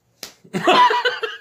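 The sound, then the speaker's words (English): A single sharp smack of a hand against the person's own head, a quick flat slap, followed by a longer rough, noisy rustle that fades out unevenly. “Did everyone hear me smack my head?”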